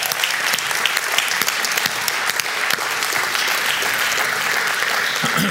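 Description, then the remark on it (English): A church audience applauds steadily for several seconds after a blessing prayer, a dense, even wash of many hands clapping at constant loudness with no voices breaking through. “All right, one more round of applause.”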